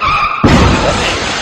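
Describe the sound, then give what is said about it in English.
A car crash sound effect depicting a girl getting hit by a car: a brief tonal hum cuts off into a sudden, loud, harsh impact, followed by a sustained noisy rumble and clatter that fades slightly over a second. “That was a girl calling somebody a cunt, but then getting hit by a car.”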